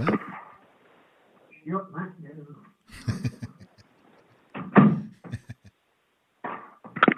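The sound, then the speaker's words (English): A door is pushed shut, with a few sharp clunks and rattles of the latch and frame, mixed with some brief murmured voice and shuffling movement. “Let me just shut that door.”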